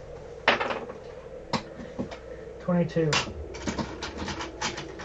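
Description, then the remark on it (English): Dice clatter across a hard tabletop in several short, sharp bursts of clicks, fairly loud, as players roll for a perception check in a game, with a brief murmur of voices in the background. “Everybody roll me a perception check.”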